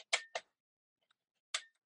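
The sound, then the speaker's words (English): Sharp mechanical clicks from a camera's focal plane shutter firing: a quick pair of bright snaps in close succession, a short silence, then one more crisp click. “Actually, this camera has a focal plane shutter.”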